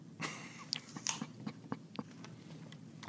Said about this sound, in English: All right. I'm just going to munch this moist apple with my teeth.